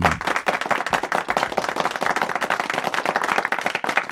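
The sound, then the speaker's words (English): A burst of applause: many hands clapping rapidly and densely, a steady crackling patter that stays loud and even for about four seconds with no voices. “I actually give this commenter an applause.”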